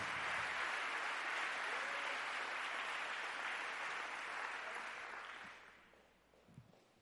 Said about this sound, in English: One more time, would you give the Lord a hand clap of praise before you're seated?